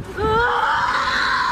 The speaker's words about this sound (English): Screams of anguish as workers fled this Middleton, Wisconsin office park.